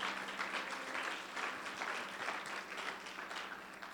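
A crowd claps steadily in a room, many hands producing a dense, continuous patter of applause at moderate volume for the full duration, with no clear talking over it.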